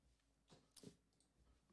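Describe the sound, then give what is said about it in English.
A sharp clattering knock of something landing on a computer keyboard, one prominent hit with a couple of softer taps around it. “Okay, don't drop it on the keyboard like that.”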